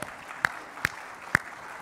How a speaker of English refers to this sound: Now, you can applaud that if you like, you know.